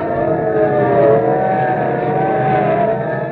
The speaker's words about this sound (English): Okay, listen, sirens. Yeah. Look, police cars, and are they rolling? And we better start hopping. They're not slowing down for anything.